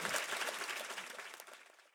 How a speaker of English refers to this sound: Thank you so much for coming to listen to these stellar experts on trolling. Round of applause for our wonderful panel.